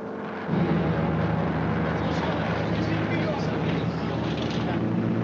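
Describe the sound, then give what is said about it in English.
A steady, loud propeller-plane engine drone from a model airplane in a film scene, flying at a steep, unlikely angle, swelling up sharply just after the start and holding a dense, rumbling roar overhead. “It's a model airplane going really at a very unlikely angle.”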